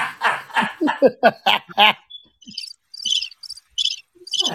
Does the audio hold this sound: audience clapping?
no